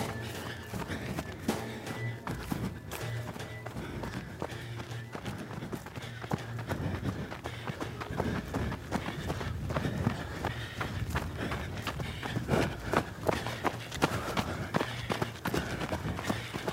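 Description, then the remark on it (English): An athlete's steady, rhythmic running footsteps pound along without a break, paired with regular breathing, over a low constant hum for the whole stretch. “It's nothing else in my mind but my feet and my rhythm, my breathing.”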